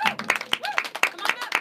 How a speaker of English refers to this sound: So now we're going to give a warm round of applause for our girls' basketball that's in here in the studio with us.